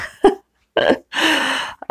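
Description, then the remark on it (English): A person sniffles a few times: a short sharp snort, a brief nasal intake, then a longer wet breathy sniff, with no talking, as if imitating someone sniffling. “She says, sniffling.”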